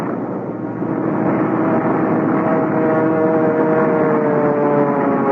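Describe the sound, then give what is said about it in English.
A plane's engine roars loudly and steadily through a dense wash of rushing noise as it lands on water and shears sideways, its droning tones climbing slightly. No voices. “I remember the plane landing and then shearing sideways before I had time to cut the engine.”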